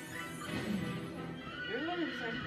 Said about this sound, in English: Where is the horse coming from? They didn't have a horse before. Why didn't they just use the horse instead of the boats?